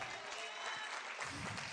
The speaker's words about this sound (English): And everybody said, let's stand and give the Lord a big hand clap. Hallelujah.